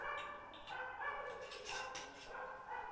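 Several noisy dogs bark and yip in repeated short bursts in a courtyard, sounding somewhat muffled. No one speaks.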